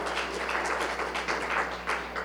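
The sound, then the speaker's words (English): A crowd of people at a family service claps together to welcome children, in a steady, dense patter of applause that holds at an even, moderate loudness for a couple of seconds, with no voices. “You can clap for them, make them feel welcome.”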